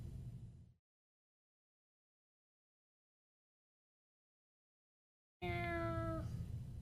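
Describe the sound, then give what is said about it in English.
After a brief burst of noise and a long stretch of silence, a cat lets out one loud meow with a falling, drawn-out pitch near the end. “Don't step on the cat.”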